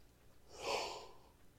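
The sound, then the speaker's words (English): A single stifled yawn, a soft breathy swell that rises and fades over about a second, quiet and muffled with no talking around it. “Sorry, I've been fighting that yawn for 15 minutes.”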